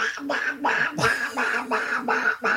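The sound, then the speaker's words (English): A woman does a raspy, quacking Donald Duck impression, a rapid series of about six nasal, buzzy bursts in a steady rhythm, fairly loud. “I'm going to have her do an impression of Donald Duck.”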